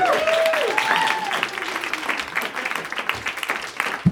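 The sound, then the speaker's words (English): A crowd claps steadily for about four seconds for comedian Baron Vaughn as he steps up to the mic, a dense crackling wash of applause, with a rising and falling whoop or whistle of cheering over the first second. “Oh, clap your hands for Baron Vaughn.”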